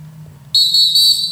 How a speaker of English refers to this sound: Damn. Ooh, them whistles be whistling.